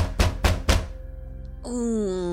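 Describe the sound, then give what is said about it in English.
Three heavy, evenly spaced knocks thud on a door in the tower of the Arcane Brotherhood, deep and forceful, followed by a low background hum and then a sustained tonal sound rising in. “As you're getting ready to leave to Icewind Dale, where you have been directed, this heavy knock comes at the door.”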